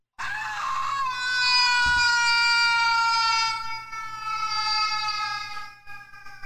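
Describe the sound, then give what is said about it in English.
A video game's scream voice clip, the same scream used each time: a single long, high-pitched scream holds a steady wailing tone with rich harmonics, loud and sustained for several seconds before wavering and abruptly cutting off. No one speaks over it. “However, the voice clip used by the game is so. I found it to be incredibly annoying. It's the same scream each time.”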